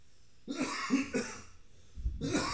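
A person coughs in a harsh fit: three quick hacking bursts, a brief pause, then another rough cough, with no talking.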